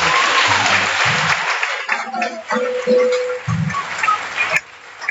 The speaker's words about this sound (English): Can we give a clap of praise to you?